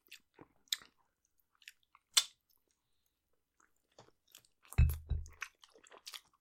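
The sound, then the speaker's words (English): Wet, crunchy chewing of chicken wings: scattered sharp bites and crackles, a louder burst of smacking and crunching near the end, then softer squishy chews. No one speaks. “Wings have that center meat between the bones. And I always try to push that out with my finger a little bit.”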